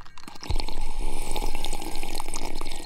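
Someone drinking a liquid: after a half-second pause, a steady, fairly loud wet gurgling and sloshing runs continuously for a few seconds, with no talking.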